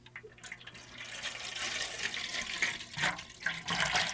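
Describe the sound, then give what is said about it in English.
Water splashes and sloshes about in a bowl readied for placing a slice of fruitcake in it, a steady, fairly loud liquid rush that swells in bursts toward the end, with no one speaking. “All right, I have my bowl of water all ready to go.”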